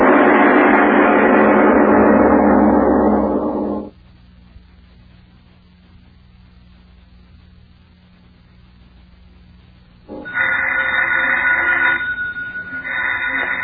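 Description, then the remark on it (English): An old-fashioned telephone bell rings in two long, loud bursts separated by a silent pause of several seconds, with no one speaking over it. “answer the phone, please.”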